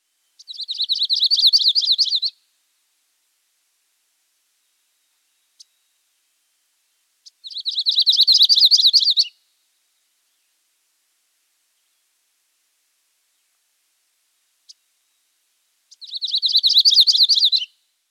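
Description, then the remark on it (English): A yellow-rumped warbler sings three short, high, slow, clear and sweet trilling songs, each about two seconds long and mostly steady in pitch, separated by long quiet gaps, with no talking. “The yellow-rumped warbler's song is slow, clear, and sweet. It mostly stays on the same pitch.”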